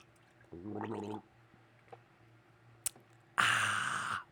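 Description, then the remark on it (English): A short slurping sip from a can of drink with a gurgling, liquid quality, then a faint metallic tap and a breathy, fizzy exhale-like rush, with no talking. “I've got a can of one, as a matter of fact, right now. So I'm going to take a little sip off of that.”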